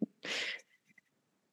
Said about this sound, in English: I don't know what he ate or drank or did, but dog sneezes are worth listening to.